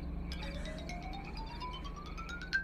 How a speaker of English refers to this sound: It's Charlie's phone.